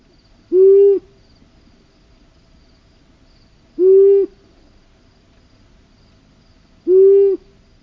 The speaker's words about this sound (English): Then the long-eared owl.